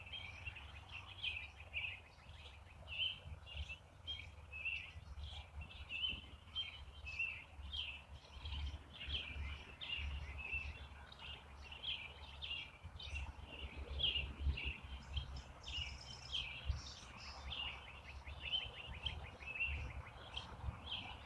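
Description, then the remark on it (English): Many birds, including a robin, chirp and tweet continuously in overlapping calls, a busy outdoor morning chorus by a cornfield over a low rumbling background hum. “All the birds are singing and tweeting and chirping.”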